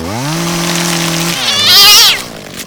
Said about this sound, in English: So get yourself down to Bob's Chainsaw Shack and pick up a chainsaw you can trust. Hell, some people even cut down trees with them.